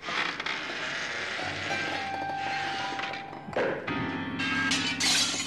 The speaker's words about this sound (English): To the alarm of the assembled company, from the conservatory comes the unmistakable sound of a Brummie abattoir owner engaging so thoroughly in sexual congress that he's pushed a grand piano through a plate glass window.